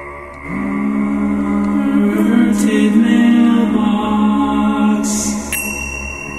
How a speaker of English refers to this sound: Did you use the gong for that? No, those were chimes. Those were finger chimes.